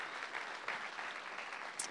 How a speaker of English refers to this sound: And so, church, can we give them a big hand clap this morning for being here?